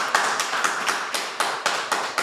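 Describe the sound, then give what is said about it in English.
Hands clap for Odessa Kelly in a quick, steady rhythm, sharp bright smacks repeating roughly four times a second over a dense wash of overlapping claps, moderately loud with no talking. “Let's clap it up for Odessa Kelly.”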